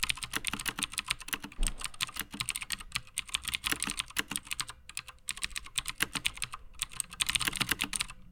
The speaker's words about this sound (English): So this DOS keyboard with blue is like the first mechanical keyboard I ever tried for Mac specifically. Okay. It's like the first result on Amazon when you search for it. This is what the blues are.